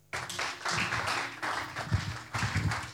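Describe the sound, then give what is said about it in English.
A crowd claps steadily for about three seconds, a dense, continuous patter of many hands with a few louder bursts toward the end. No one speaks. “You clap your hands.”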